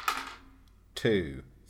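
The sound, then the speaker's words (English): A quick clatter of several dice tumbling across a hard surface as they are rolled during a game, followed a moment later by a short burst of another rattle overlapping a brief voiced exclamation. “And I've got many clumsy dice to roll.”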